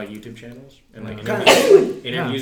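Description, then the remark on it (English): A single loud, sharp sneeze bursts out in the middle of casual conversation, with people talking just before and right after it. “Bless you.”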